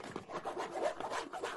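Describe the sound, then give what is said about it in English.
Continuous crinkling and rustling of cloth-like, double-sided Lego- and popsicle-print Christmas gift wrapping paper being handled and torn open, a dry scratchy texture with small irregular bursts and no voices. “I actually sprung for nice paper. Yeah, it's like that cloth.”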